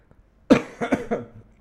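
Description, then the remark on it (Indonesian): A sharp cough bursts out, followed by a few quicker, weaker coughs trailing off over about a second, with no talking. “Aduh, sorry, batuk.”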